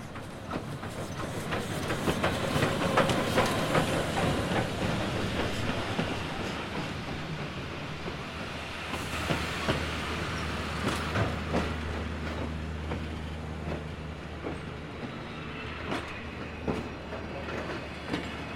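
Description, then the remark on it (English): A train with the engine in front and a single carriage rumbles along with rhythmic clacking wheels and metallic clicks, loud, then settles into a lower steady hum as it slows to a stop at a station platform. No one speaks. “You pick up your bag and watch the train coming over the hill and around the corner and pull up perfectly to the station platform.”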